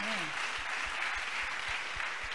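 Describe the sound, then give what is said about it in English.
Steady applause from an audience for the people who came from Douala fills the whole stretch, dense and continuous at moderate loudness, with a brief voice audible near the start. “Applaudissons pour eux. Let's clap for them.”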